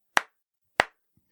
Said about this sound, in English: This is my clap for you, heroes.